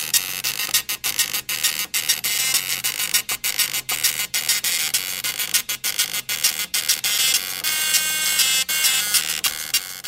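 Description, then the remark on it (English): A buzzy, droning chiptune version of a pop song, sounding as if played by old machines, with steady harsh tones broken by short rhythmic gaps. No voices are heard. “And it feels like it's played on like it's an old piece of technology.”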